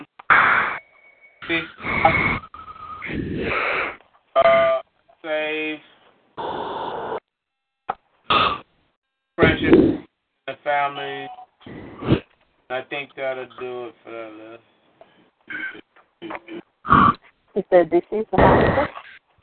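Snoring of a caller asleep on the line comes over a narrow, tinny phone line: irregular bursts of snorts and throaty, grunting breaths, some with a buzzing pitched tone, separated by short silences. No one speaks.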